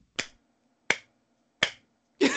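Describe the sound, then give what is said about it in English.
Four slow, evenly spaced, condescending hand claps, each a sharp crisp smack with a brief decay, the final one slightly fuller and louder. No voices accompany them. “That was my most condescending clap.”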